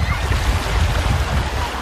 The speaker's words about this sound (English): It's the height of the summer season here in Lampedusa, and as you can probably hear, the local beaches are packed with tourists who are flocking to the island